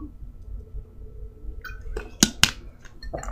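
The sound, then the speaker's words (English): Someone sips water: a soft rustle, then two sharp, quick clicks close together, likely the cup or swallowing, over a low murmur of background hum. No one speaks. “Okay, so I'm gonna take a sip of water real quick because I'm running out of breath here.”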